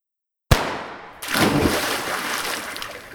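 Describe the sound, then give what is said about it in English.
A sudden heavy splash as a person jumps into the Mississippi River while out fishing, followed by a couple of seconds of loud churning and sloshing that slowly settles, with no voices. “You dumb motherfucker, you're not supposed to jump in the water to fish.”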